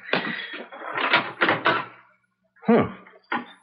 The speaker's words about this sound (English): Door's open. Not like Marion to leave without locking the front door.